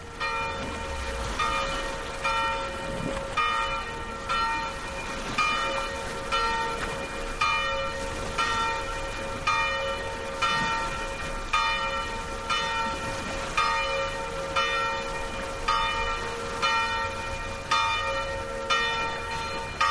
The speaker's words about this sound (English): We leave you on a rocky shoreline along the south coast of France in a little village called Baume-les-Mimosas. Stephen Feld set up his microphones there to record the noontime bells from two churches.